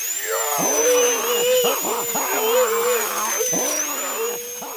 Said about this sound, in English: There is the high, horrible whine of the drill as he lowers it to Willow's maw.